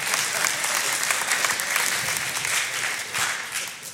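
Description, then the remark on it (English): A crowd applauds steadily for about four seconds, a dense, even wash of many hands clapping at once with no pauses and no voices standing out. “You don't have to clap.”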